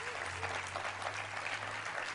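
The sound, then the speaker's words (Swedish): An audience claps steadily, a dense wash of many hands applauding evenly throughout, with a low steady hum running underneath. “Vi kör en applåd på honom här.”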